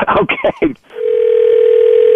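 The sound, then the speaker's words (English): A short burst of talking gives way to a steady, unbroken telephone dial tone as someone calls the principal, a single mid-pitched hum that holds at even loudness to the end. “I'm calling the principal.”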